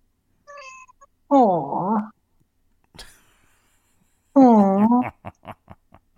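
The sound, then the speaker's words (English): A cat named Zora meows twice, each call long and wavering, with a short pause and a soft click between them. The second meow trails off into a quick run of brief chirps. “You can't go wrong with the cat video.”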